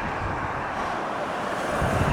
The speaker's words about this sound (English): Whoa, it's windy again.